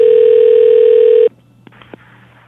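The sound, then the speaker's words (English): A loud, steady telephone dial tone hums for about a second, then cuts off abruptly, followed by a few faint, brief clicks or beeps of dialing against quiet line noise, as a call is placed to a borrowed phone. “Is that okay for me to call you on their phone?”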